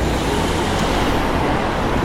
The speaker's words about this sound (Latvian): Tā kā es domāju, ka jūs uzreiz dzirdat šeit brauc garām arī automašīnas šurp tur, tagad trafiks diezgan pamatīgs ir ārā, un, jo īpaši ārā no trases, jā, iekšā varbūt mazāk.